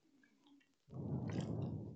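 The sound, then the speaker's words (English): Someone drinks water: after a quiet start, a loud, steady run of wet gulping and sloshing sounds fills the second half, with no one talking. “I'm going to drink water.”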